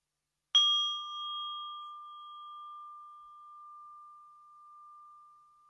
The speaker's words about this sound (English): And I'm inviting the bell that invites you to concentrate on your breathing and yourself.